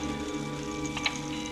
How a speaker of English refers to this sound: Our lives were geared to the relentless machinery of the grandfather's clock that ticked away near the curtained archway.